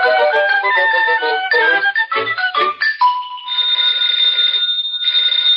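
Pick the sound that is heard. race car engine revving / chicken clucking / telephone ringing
telephone ringing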